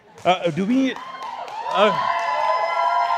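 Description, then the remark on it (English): A lively crowd cheers loudly, with whooping shouts rising and falling at first, then a steady roar of voices and sustained high yells. “You guys are rowdy.”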